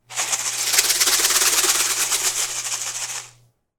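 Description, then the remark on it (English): Snakes rattle loudly in a dense, rapid, hissing buzz that holds steady for about three seconds before cutting off, with a faint low hum underneath and no voices. “The snakes rattle them loudly.”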